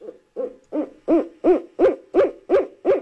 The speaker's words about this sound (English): That's... That's an owl.